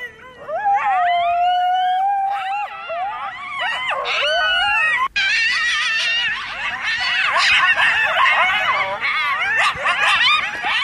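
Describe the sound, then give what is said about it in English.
A pack of coyotes howls and yips right outside a hut among trees in the darkness, several wavering high-pitched voices overlapping in a loud, continuous chorus with rising and falling wails and excited yelps, no talking. “These were like, these coyotes were right outside the hut.”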